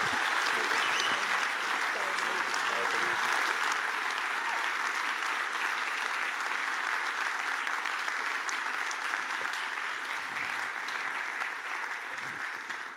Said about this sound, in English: So, guys, let's just give Adam a huge round of applause.